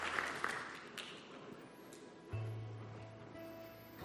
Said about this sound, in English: Come on, if you receive this word, would you give the Lord a good round of applause?